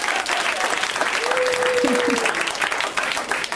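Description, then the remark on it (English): A comedy show audience applauds steadily, a dense wash of many hands clapping at once that holds a constant loudness from start to finish, with a brief faint tone rising through the middle. “Okay, and then you guys clap for them.”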